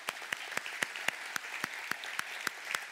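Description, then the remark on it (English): A church audience applauds its standing deacons: steady, evenly spaced sharp claps ring out over a continuous hiss of many hands, lasting a few seconds with no voices. “I would like all the deacons, if you will, stand, and we just want to give you a clap of applause for thankful for your ministry.”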